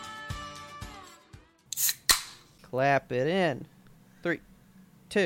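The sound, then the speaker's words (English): A single sharp, loud hand clap cracks out among a few other quick snaps, with a tonal, music-like hum and short bursts of voices around it. “Clap it in.”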